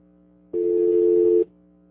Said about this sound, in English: So in other words, all those other three lines now are like incapacitated while the phone comes. No, you'll hear a dial tone on them or not. No?